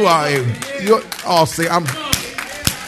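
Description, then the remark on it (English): A few sharp, isolated hand claps from one person ring out near the end, spaced irregularly, while a man's voice talks loudly over and around them. “I'll clap.”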